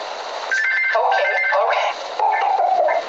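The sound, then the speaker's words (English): A telephone rings in two fairly loud bursts separated by a brief pause, its warbling electronic tone sounding thin and band-limited, with no one talking over it. “Sorry, I know in the phone. It always rings when you're talking to someone.”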